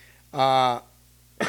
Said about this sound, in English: excuse me coughing on here. See, I'm not fast enough to pause it sometimes, so I guess you got to deal with that.